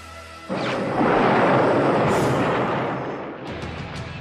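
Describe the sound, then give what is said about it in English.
A sudden, loud blast from Megatron's cannon, fired right at Ironhide's face, erupts into a roaring, crackling explosion that rumbles for a couple of seconds before slowly fading, with a few sharp crackles near the end. “Now, we don't see this, the camera tilts up to Megatron's face, but we see the cannon is right on Ironhide's face before he blasts, so we know.”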